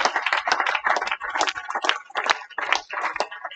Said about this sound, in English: Somebody ought to clap your hands and just praise Him right there.